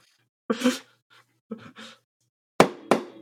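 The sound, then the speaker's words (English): Three sharp, loud knocks on a door in quick, even succession, preceded by a couple of short breathy vocal sounds. “But here, in Whimsy World, we knock. Grimby says, we're gonna knock on it.”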